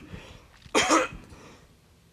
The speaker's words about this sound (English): God damn it. Got a cough that doesn't want to come out.